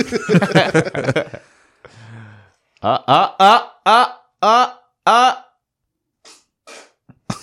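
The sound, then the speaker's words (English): A short, low, rumbling fart sounds just after a burst of talk, followed by several drawn-out vocal exclamations and a few faint noises. “That was a fart.”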